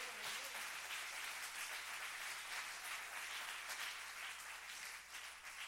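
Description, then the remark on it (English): A crowd claps steadily for several seconds, a dense, sustained wash of many hands with no pause or clear rhythm, fairly loud throughout. “Clap your hands if you would.”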